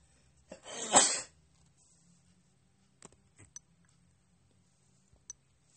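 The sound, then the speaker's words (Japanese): A single loud sneeze bursts out near the start, followed by near silence broken only by a few faint, scattered clicks. “ごめん、くしゃみぞ。”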